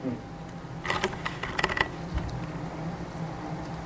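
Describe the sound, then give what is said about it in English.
A burst of crisp crinkling and tearing as wrapping paper is unwrapped, lasting about a second amid quiet background noise, with no talking. “Man, that's good wrapping paper.”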